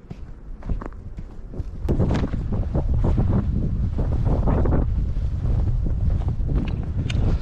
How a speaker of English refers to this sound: Lots of wind here today. Lots of wind.